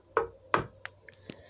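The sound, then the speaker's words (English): Two loud, resonant knocks on a door, followed by three lighter, quicker raps, with no voices. “There was a knock on her door. Actually, this is probably more knocking sound.”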